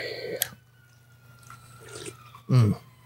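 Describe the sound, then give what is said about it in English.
A sharp clink, then near silence, before a shot drops into a peach whiskey with orange liquid ice to make a Royal Screw: a short, loud liquid plop and splash with a low, gulping body. “We are going to drop shot into it and let you know what we think of the Royal Screw.”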